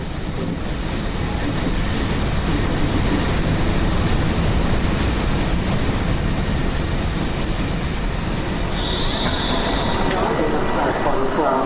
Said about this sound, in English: Please stand behind the yellow line. Smart entrance is located at the front of the train.